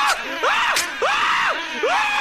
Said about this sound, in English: Then stop screaming so loud.